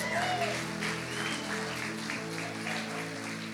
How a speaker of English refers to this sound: And everybody said, everybody said, can we give Jesus a round of applause? Come on.